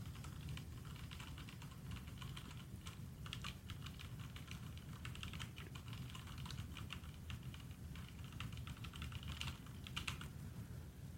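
Rapid, continuous clicking of keys on a mechanical keyboard, a dense stream of sharp taps with brief bursts and pauses, steady over low background rumble, no voices.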